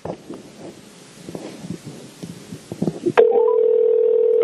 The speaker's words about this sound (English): And, so we're going to call a random number and we're going to see who answers and we're going to try and talk to them.